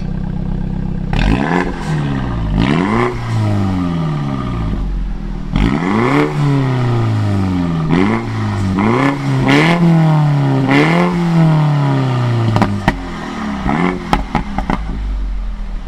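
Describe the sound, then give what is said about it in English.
A prototype car fitted with a tuning kit, an exhaust with software, revs hard over and over, pitch sweeping up and down through repeated bursts, with crackles and pops between revs, loud with no talking. “Let's play a little bit audio here from this car that we drove, a prototype of this, and I'm using air quotes here, tuning kit, which I just say it's an exhaust with software.”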